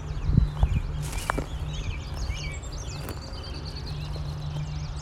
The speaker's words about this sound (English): Some walking noise.